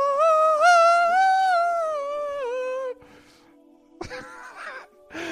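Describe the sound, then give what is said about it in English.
Voices imitate a choir of little cherubs yawning: a long, loud, wavering groan slides downward for about three seconds, then after a short lull several shorter yawning moans overlap. “A choir of little yawning cherubs.”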